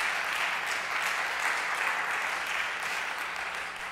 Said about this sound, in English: Let's give God a hand clap of praise for all of that.